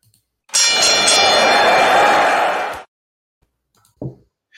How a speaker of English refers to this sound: I'm going to ring the bell, and we're going to get into Raw.